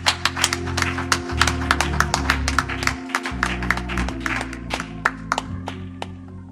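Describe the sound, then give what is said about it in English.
An audience claps hands in praise to God during worship, in a steady, quick rhythm, the sharp claps ringing out over sustained organ and bass music throughout. “Can we clap our hands and give God praise?”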